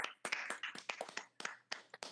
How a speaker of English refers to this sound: Hey, let's go. We got sponsors now. We moving up in this podcast world. Round of applause for us.